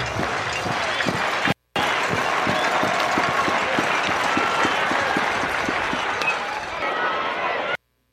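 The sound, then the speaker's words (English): A packed, full-house crowd at an Ole Miss vs. Mississippi State baseball game, shoulder to shoulder with no masks, cheers loudly in a dense, steady roar of many voices, punctuated by rhythmic rounds of clapping and broken by one brief dropout. “Ole Miss and Mississippi State played a baseball game to a full house, packed like the old days, shoulder to shoulder, no masks, and it was glorious.”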